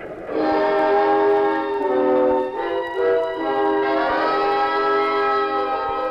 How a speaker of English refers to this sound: Well, the train's going too fast.